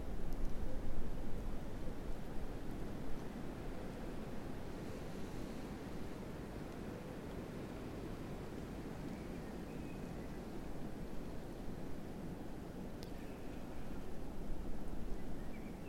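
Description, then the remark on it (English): Steady, broad rushing of wind through the tops of trees, which sway with it, a continuous hiss and roar that swells slightly at the start and near the end, with no voices. “Whereas if I look to the tops of the trees themselves, there's a wind there.”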